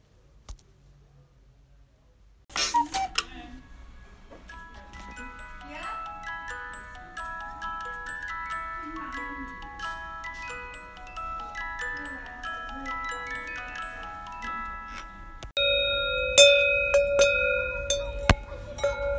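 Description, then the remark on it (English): A cuckoo clock in Switzerland ticks steadily among bright, ringing metallic tones, clear, with the clatter growing louder and busier toward the end. “And please enjoy some cowbell sounds, actual cowbells on cows, and a cuckoo clock that I taped.”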